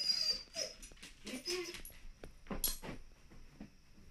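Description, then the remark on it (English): A dog barks and yips in short, scattered bursts, with thin whining cries mixed in, moderately loud over a quiet background. “Hey, please don't bark.”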